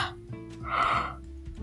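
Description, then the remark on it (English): A single drawn-out yawn, fairly soft, swelling into a breathy, voiced middle and fading away over about a second, with no talking. “sorry, I had a yawn.”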